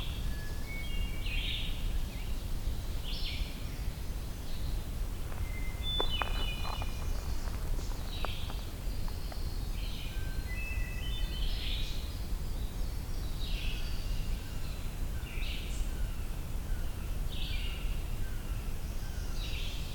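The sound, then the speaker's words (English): An ovenbird sings briefly, its short chanting phrases repeating over and over above a steady low outdoor rumble, with a few faint clicks and no voices. “Oh, there was an oven bird briefly.”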